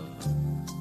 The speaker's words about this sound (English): Max hates when people burp on podcasts and don't edit it out. So DP, leave that in.